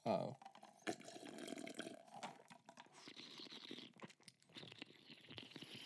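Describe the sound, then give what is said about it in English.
Wet sipping and slurping of fine brandy from a glass, a run of soft liquid mouth noises and small smacks over several seconds, fairly quiet and intimate. “I'm going to sip some fine brandy now.”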